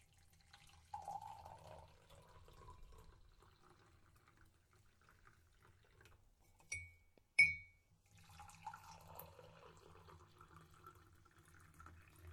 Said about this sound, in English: Now we'll take our boiling water and gently pour it into the cup.